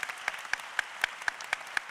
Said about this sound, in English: I know you gave her a round of applause, but let's do it one more time. Come on.